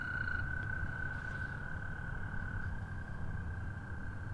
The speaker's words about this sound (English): I think you can hear in the background the American toads. They're going to be a part of our conversation as well today.